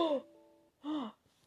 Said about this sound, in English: That gasp was my computer dying. Literally in the middle. In the middle of recording.